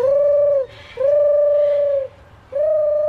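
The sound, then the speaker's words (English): A child's voice imitates a pigeon's coo at a school children's bird-calling competition, the Bornda Bird Olympics: three long, steady hooting notes, loud, separated by short breathy pauses. “and I'm doing a pigeon.”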